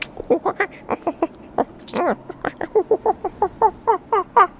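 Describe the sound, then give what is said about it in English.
A person's voice imitates a monkey-like creature chittering in draconic speech: a fast run of sharp, pitched chirps and squeaks in a steady stuttering rhythm, fairly loud, with one brief sliding whoop near the middle. “Is that what a monkey speaking draconic sounds like?”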